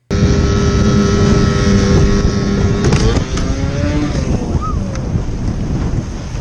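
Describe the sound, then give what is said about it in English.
A small motor dinghy's engine drones steadily as the boat speeds across water carrying two girls, its pitch shifting briefly partway through, with wind buffeting the microphone and water rushing beneath. “They're like in a fucking little dinghy, and they're like, they're booking it, dude, and the whole fucking motor just falls into the goddamn water.”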